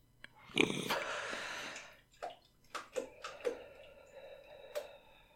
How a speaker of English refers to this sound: It's got to be like the most boring thing to listen to on a podcast ever. Listening to somebody breathing.